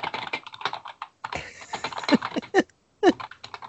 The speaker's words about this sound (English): It's a very noisy keyboard, but it feels amazing. Anyone who's typed on one of these things will know what I'm going on about when I say it's just an amazing keyboard to type on.